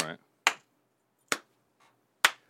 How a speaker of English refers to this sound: we're gonna clap in a circle to sync up the video with the audio.